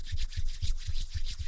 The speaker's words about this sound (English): The rustling grew louder, followed by a light thumping.